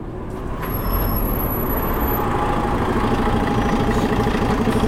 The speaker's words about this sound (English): But what's this? There are lights in the road ahead. Hang on, there's a bus coming.